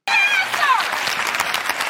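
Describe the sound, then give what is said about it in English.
A crowd claps steadily, a dense burst of applause starting abruptly and holding at full strength, with a few high whoops or cheers rising over it at the start. “Can't clap with you.”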